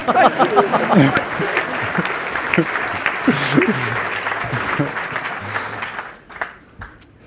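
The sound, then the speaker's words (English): An audience applauds with steady, dense clapping for about six seconds, mingled with scattered voices, then the clapping thins out and fades to a few last claps. “Everybody clap.”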